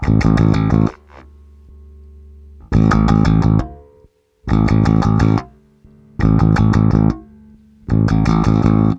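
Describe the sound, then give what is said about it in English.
An electric bass guitar with the distortion off plays a repeating riff in a dry tone: five loud, bright bursts of rapid notes, each separated by a lower held note ringing out. It is prominent, with no voices. “We're just going to establish what this does to the signals, the dry tone first, and then we'll add in the distortion.”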